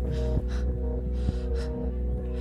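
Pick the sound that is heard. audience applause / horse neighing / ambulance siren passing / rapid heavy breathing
rapid heavy breathing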